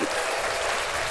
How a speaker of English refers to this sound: That was actually pretty funny. Thank you. I'm going to give you applause for that.